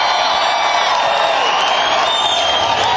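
A loud, steady roar of a packed concert crowd filling all three levels of the Wildhorse Saloon, cheering as a band is about to take the stage, with dense clapping and whoops blending into a continuous wash of noise that holds at full volume throughout.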